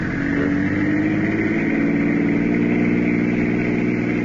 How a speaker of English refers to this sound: Faster, Richie. See if that car stays with us.